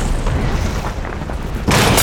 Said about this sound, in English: Several pieces of the ceiling collapsed, smashing into the monitor.